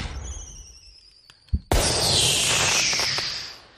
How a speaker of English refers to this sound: Lighting off some fireworks.